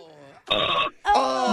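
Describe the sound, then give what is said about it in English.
A short series of throaty, croaking burps, three quick belches in a row with brief gaps between, loud and raspy with no talking. “The burp factory isn't working the way it should today.”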